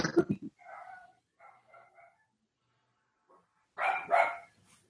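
Dogs bark in short bursts, a sharp cluster at the start and a louder pair near the end, with softer whiny yips in between and no one talking.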